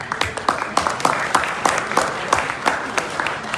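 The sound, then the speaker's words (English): A crowd at True Life claps together, applauding themselves and the person next to them, in a dense, sustained burst, with sharper individual claps popping out at a fairly steady rhythm and no one speaking over it. “And now clap for the person next to you.”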